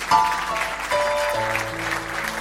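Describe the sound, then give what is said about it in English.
A church audience claps for a visiting preacher for a couple of seconds, a dense, even patter of applause, while a few sustained keyboard-like tones ring underneath and shift to lower notes partway through. “A round of applause.”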